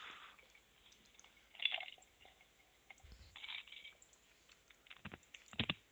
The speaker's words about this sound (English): Do not chew ice while you're doing my show.